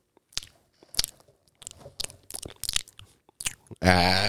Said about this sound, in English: Y'all are gonna have to pay for that like 2 seconds of ASMR you just got. Tasting the beer.